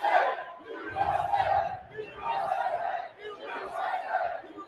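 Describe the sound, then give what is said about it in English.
A large crowd of Trump supporters chants "USA" in loud, steady, repeated bursts, each shout rising and falling in a rhythmic cadence with a roaring mass of voices underneath, as they storm into the north side of the United States Capitol. “Trump supporters are now chanting USA.”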